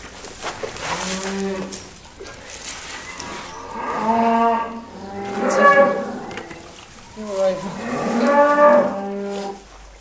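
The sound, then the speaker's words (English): A cow moos repeatedly beside her newborn brown Red Limousin calf, several drawn-out, rising lows in a row, growing louder toward the end, with no talking. “A brown-coloured, perfectly formed calf arrives.”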